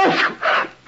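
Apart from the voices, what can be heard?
sneeze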